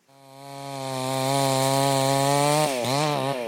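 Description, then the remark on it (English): In light rain in Ukraine, among spent Russian artillery shells, a man cuts a half-burnt tree with a chainsaw: it drones loudly and steadily after a quick rev-up, its buzzing engine pitch holding firm before dipping and wavering near the end as the blade bites into wood. “In a light rain, among jumbled spent Russian artillery shells, a Ukrainian man saws away at a half-burnt tree, its top a fray of splintered wood.”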